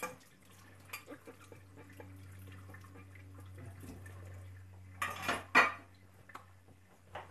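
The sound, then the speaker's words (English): Dishes being washed: scattered clinks and clatters of pots and cutlery over a steady low hum, with a louder burst of clattering and running water near the end. “Got all the dishes done.”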